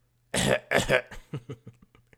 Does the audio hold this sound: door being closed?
no